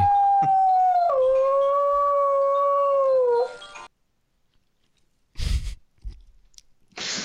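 A dog lets out a single long, loud howl lasting a few seconds, rising in pitch partway through before trailing off, followed by silence and a couple of brief noisy bumps.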